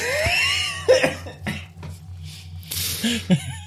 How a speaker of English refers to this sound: My cough's gonna come back with a vengeance.